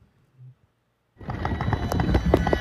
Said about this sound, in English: Like, he turned the camera off, but he just left the phone on the camera app. So while my phone is like jolting around in my bag, it hit the record button. Listen to this shit.